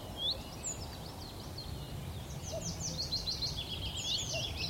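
A faint, distant male common cuckoo calls a couple of times from above, beneath a busy chorus of high, twittering songbirds in woodland, over a steady low outdoor rumble.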